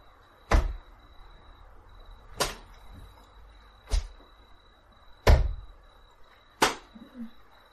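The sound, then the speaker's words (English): Five heavy, wet thumps of something wet groping around strike stone and water at uneven intervals, each a sharp impact that fades quickly, with quiet stillness and a faint steady hum between them. “The sound of something wet groping around, thumping off the stone, thumping off the water.”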